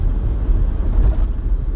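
A steady, loud low-frequency engine rumble from inside a truck pulling a loaded gooseneck trailer as it drives through town traffic toward the highway, a continuous drone with slight fluctuations and no voices.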